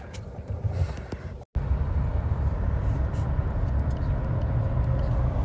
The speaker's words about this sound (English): So I'm settled in the car.